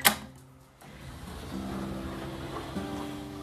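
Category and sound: nature, rain falling outside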